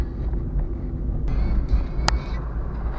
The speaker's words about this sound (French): Je roule tranquillement, hein. Je suis à 40 km/h, histoire de ne pas faire le fou.